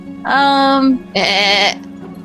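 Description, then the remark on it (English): Two loud goat bleats in quick succession, each about half a second long with a wavering, nasal tone, the second harsher and more quavering than the first. “Is that a goat sound? I think that's a goat sound.”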